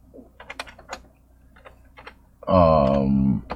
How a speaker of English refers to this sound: I love the fucking hunt and peck typing though.